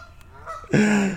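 A loud, harsh goose honk blares after a moment of quieter background, one sustained raucous call with a strained, agitated edge, from geese chasing a dog named Luna as she swims back to shore.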